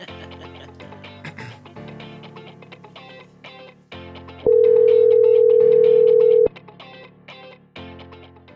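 An outgoing phone call's ringing tone sounds once, a loud steady hum lasting about two seconds, over continuous background music. No one speaks.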